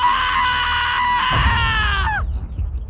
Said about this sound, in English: Then he quivered and shook, and finally allowed himself to let loose a wild scream.